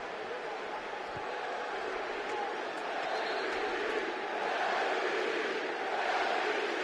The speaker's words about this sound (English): Crowd chanting MVP for Harden.